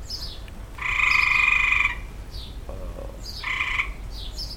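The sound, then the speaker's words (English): A strange, harsh bird call rings out in two loud buzzy bursts, a long one then a shorter one, with faint high chirps scattered around them and no talking. “And there's that weird bird again. There's that weird, crazy sound again.”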